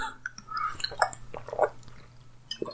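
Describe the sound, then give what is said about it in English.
Someone takes a sip of water, with a few short wet gulps, slurps and mouth clicks over quiet background hum, no talking. “I just need to take a drink of water.”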